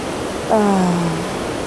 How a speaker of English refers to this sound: I am inspired by this wonderful nature, by the flow of the water.